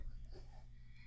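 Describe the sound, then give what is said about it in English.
Soft, airy breathing into a microphone, faint and steady over a low electrical hum, with no clear words spoken. “It can totally still hear you. You're breathing heavily.”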